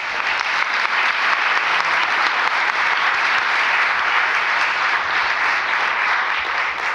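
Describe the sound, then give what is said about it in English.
A crowd applauds steadily for several seconds for the panelists at an evening panel event in a historic venue: a dense, even wash of many hands clapping at a constant loud level with no voices breaking through. “And then before we go, let's give a big round of applause to the people who so gracefully took this panel tonight.”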